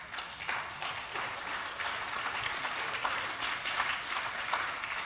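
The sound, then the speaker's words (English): An audience claps steadily for several seconds, a dense, continuous patter of many hands with a few sharper claps standing out, with no clear speech. “moment should cause us to get out of our seats and raise those palm branches like those kids and clap and shout.”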